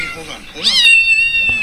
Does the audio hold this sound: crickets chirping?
no